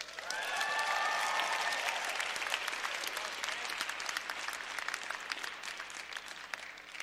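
An audience of students and visiting families cheers and applauds after a welcome greeting, with dense clapping and a few shrill whoops at the start. The noise swells quickly, then holds steady for several seconds as the claps continue.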